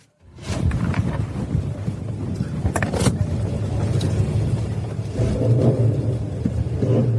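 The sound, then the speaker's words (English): The engine of an old, restored Chevrolet Chevelle rumbles loudly, a deep, steady growl heard from inside the car at the Phillips County Motor Speedway, swelling into a brief rev near the end. No one speaks. “And this is an old car that me and my dad restored.”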